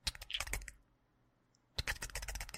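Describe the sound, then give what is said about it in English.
A voice imitates a snickering, clicking noise like a scorpion: rapid, dense bursts of sharp clicks, fairly loud, breaking off for about a second of near silence before resuming. “Yeah, almost like a snickering or a clicking.”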